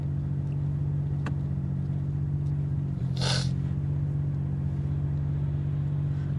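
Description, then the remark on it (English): Steady low engine drone of fairly busy highway traffic, heard while going under a highway overpass, with a brief bright whoosh of a vehicle passing midway and a faint tick earlier; no voices. “Okay, looks like now we are going under a highway overpass, underpass, whatever.”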